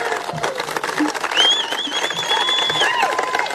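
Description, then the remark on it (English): Sparse, scattered clapping from four people in the audience at Liz Cheney's speech responding to her election defeat by Hageman, steady and moderately loud throughout, with a thin high whistle-like tone sliding in midway and fading out near the end. “Four people in the audience clapping.”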